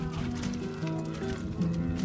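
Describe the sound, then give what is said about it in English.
A herd of cows mills about after bursting through a gate into a machinery shed, their calves left behind, with overlapping low moos and steady shuffling and bumping, forming a dense, continuous commotion throughout. “We're waiting at the gate to come in, and I think they've maybe burst through the gate, and obviously the calves got left behind, and the cows went into the machinery shed.”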